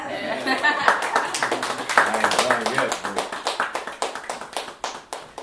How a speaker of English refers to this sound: All right, y'all can cheer now.